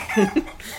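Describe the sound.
A person makes a quick pair of throaty, clucking noises, imitating a chicken. The two short bursts are moderately loud, with no other talking.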